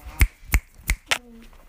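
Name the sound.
finger snapping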